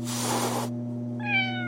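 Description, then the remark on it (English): A single short meow from a cat named Catnip, clear and fairly loud, comes after a brief burst of hissy noise, with a steady low hum running underneath the whole time. “Come here, kitty.”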